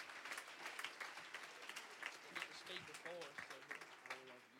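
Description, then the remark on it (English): A crowd at an apostolic youth rally in Jennings claps steadily for the church, dense overlapping hand claps forming a continuous patter of applause, with a few voices calling out over it toward the end. “Why don't we give this church, again, a hand clap.”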